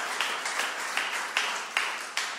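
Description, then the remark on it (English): An audience claps for Jesus together in a steady rhythm, sharp beats landing about twice a second over a continuous wash of crowd noise, fairly loud. “I want you to see everyone here clapping for Jesus and believing that what God's doing in your life.”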